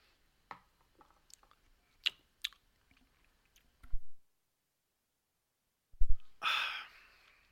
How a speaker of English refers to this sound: I need some water. Hold on.